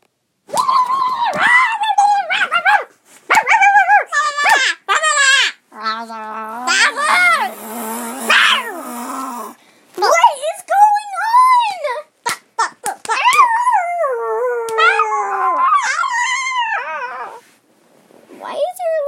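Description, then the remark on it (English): A child's voice barks and howls in imitation of a dog, with repeated yelps, whimpers and long rising howls over about twenty seconds, loud, with brief pauses between bursts. “Like a dog.”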